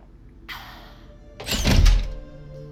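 door being locked

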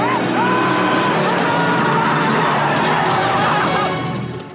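car skidding

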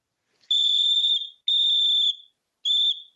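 whistle being blown

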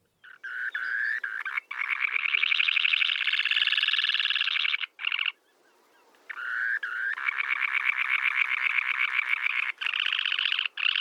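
semipalmated sandpiper call

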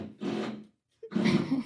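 drilling

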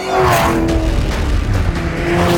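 car engine racing

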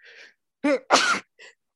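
sneeze

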